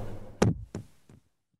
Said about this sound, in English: Demonstrate the knock for me, please. Oh, no. Okay. Give me a sequence.